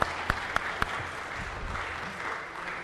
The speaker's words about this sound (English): And Forestdale, folks, you clap for them now.